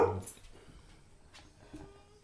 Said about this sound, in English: Sorry, yeah, dog. All right, yeah, dogs don't like people walking by. They want them to know what's up.